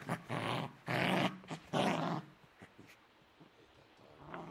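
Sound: dog growling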